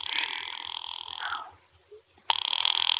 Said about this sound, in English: Ringing the police department.